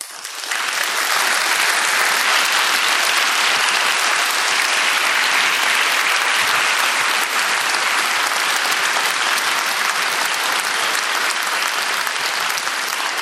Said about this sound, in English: Wow, you guys are super generous. That's like 30 seconds longer than I ever get applause for.